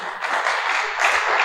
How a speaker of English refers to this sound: I thought you were clapping.